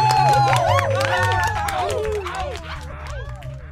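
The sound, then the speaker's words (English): A lively crowd cheers and whoops over steady clapping, the overlapping voices and hand claps holding loud throughout. “how about one last round of slappity clap for the crazy, the cosmic, the incorrigible, the inflatable, catamaraning Callahoney kids”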